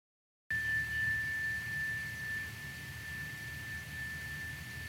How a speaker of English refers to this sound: Now with the second chime, just let the frequencies wash them off of your skin, carrying them out of your aura, out of the room.